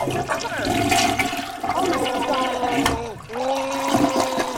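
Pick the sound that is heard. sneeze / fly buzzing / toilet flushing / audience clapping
toilet flushing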